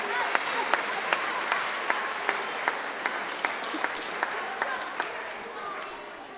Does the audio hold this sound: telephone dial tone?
no